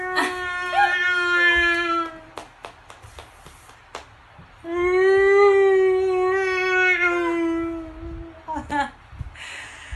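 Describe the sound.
A person imitates a whale's mating call with two long, wavering, moaning howls, one near the start and a louder one in the middle, separated by brief clicks and shuffling.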